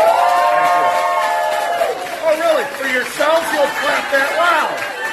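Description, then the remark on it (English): A loud audience of thousands bursts into applause for themselves at a show, steady clapping mixed with cheering and whooping voices that rise and fall throughout. “to all of you, the cast of thousands, loud round of applause for yourself.”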